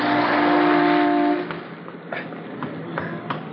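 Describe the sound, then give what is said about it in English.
A car engine roars loudly for about a second and a half, then quickly drops away as it speeds past in the street, leaving quieter street noise with a few faint clatters. “I thought sure you were going to get hit by that car.”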